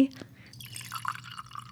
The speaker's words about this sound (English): Just sipping on some coffee. This is so satisfying. I really love that we've made this kind of a ritual, a new beginning of episode ritual. Serving coffee into your cup. I like it too. I hope you all like the ASMR because I do.